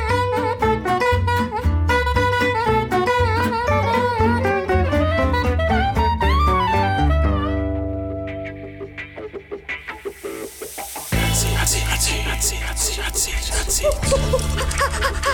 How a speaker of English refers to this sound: There's that sizzling sound. You know what that means.